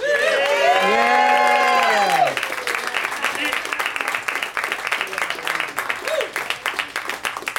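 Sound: audience applause and cheering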